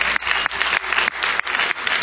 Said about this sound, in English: come on, give him a hand of applause.